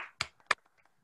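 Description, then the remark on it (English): Two sharp hand claps, given on an online call as a round of applause for the Titans and Colts, about a third of a second apart, crisp and fairly loud, followed by a few faint taps and quiet shuffling with no talking. “I think we can – all three of us, I think we can all unmute and give a round of applause for the Titans and Colts and their failure of a season.”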